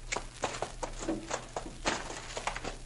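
animal, horses' hooves clip-clopping

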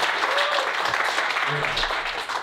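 crowd, audience applause and clapping

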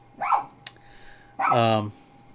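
animal, dogs barking excitedly

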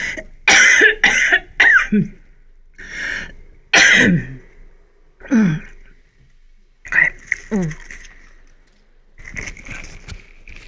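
human body sound, repeated coughing

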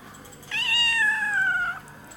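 animal, cat meowing

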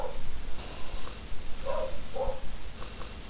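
animal, dogs barking upstairs

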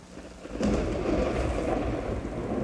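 nature, rain falling

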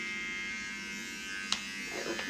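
tool, electric hair clippers buzzing

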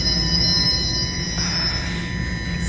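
vehicle, subway train arriving

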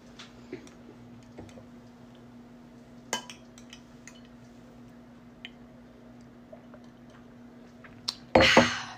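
household object, glasses clinking

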